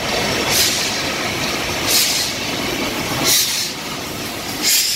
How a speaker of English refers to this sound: A huge train came in.